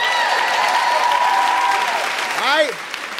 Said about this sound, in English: Let's give ourselves a big round of applause for being here tonight.